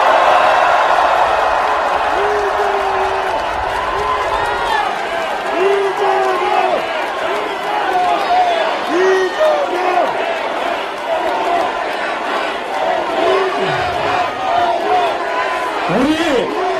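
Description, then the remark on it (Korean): A large rally crowd of Democratic Party of Korea supporters roars with sustained applause and cheering for party leader Lee Jae-myung, many voices shouting over one another amid dense clapping, loud and unbroken from start to finish. “여러분, 더불어민주당 총사령관 이재명 당대표님께 다시 한번 힘찬 박수 부탁드리겠습니다.”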